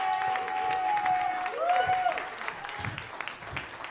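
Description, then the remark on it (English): A church audience claps their hands in sustained, dense applause to praise the Lord, with a steady held organ-like tone and a rising sung or keyboard note ringing through the clapping. “I wonder if it's somebody in here or online that would clap your hands and give the Lord praise if you know that he's given you the power.”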